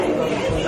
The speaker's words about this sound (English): Cheering effect cue here.